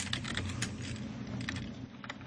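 Rapid clicking of computer keys being typed, an uneven stream of sharp taps over a steady low hum, moderately loud, with no one speaking.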